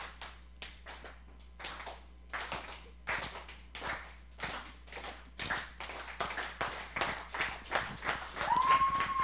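A slow clap: sharp, crisp hand smacks repeating about twice a second in a loose, steady rhythm, fairly loud with no talking, and a brief rising whistle-like tone near the end.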